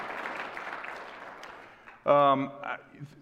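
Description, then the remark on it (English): A church audience at South Sub Church gives a round of applause to welcome online viewers, a dense crackle of many hands that steadily fades over two seconds before a single voice begins speaking. “Would you welcome our online folks with a round of applause, if you will?”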